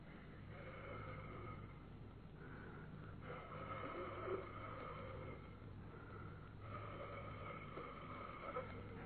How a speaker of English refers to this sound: Again, coming out of the keyhole. Not a draft. Not a draft at all. What I felt was breathing.